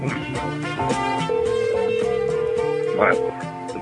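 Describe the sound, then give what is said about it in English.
A telephone ringing tone sounds once on the line, a steady electronic burst lasting about two seconds, fairly loud over busy background music. “Well, this one's ringing this time at least.”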